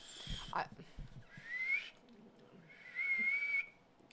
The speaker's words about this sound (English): I'm whistling.